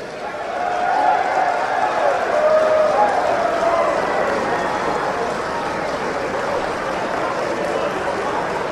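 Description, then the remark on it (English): Republican lawmakers on the House floor cheer and applaud continuously after the modification of Obamacare passes, a dense wash of clapping and shouting voices that swells in the first second and holds steady, loud and reverberant, throughout. “Now, what you're hearing, that those are Republicans, and the Republicans are cheering because the modification of Obamacare has passed.”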